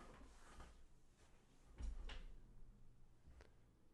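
A handicapped-accessible automatic door opening, with a low mechanical rumble and a few clunks and knocks as it moves, the loudest pair near the middle, fairly quiet and with no voices.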